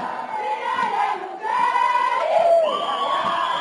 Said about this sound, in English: The crowd protested peacefully at Gate 1 yesterday morning before marching through the campus after lunchtime. With security personnel and the police in trail, the protesters overturned rubbish bins, leaving a trail of litter in their wake.